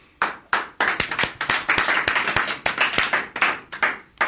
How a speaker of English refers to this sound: Thank you, but there is no need for applause.